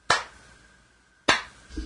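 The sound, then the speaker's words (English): Two sharp hand claps spaced over a second apart, a slow deliberate clap congratulating a graduate on a bachelor's degree, with a ringing tail after each, then a faint low rustle at the end. “I'm going to give a very slow clap.”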